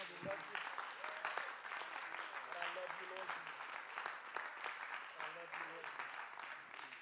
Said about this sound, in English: How many are glad you came to church tonight? Can we just give the Lord one more hand clap of praise?